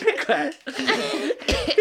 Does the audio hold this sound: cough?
yes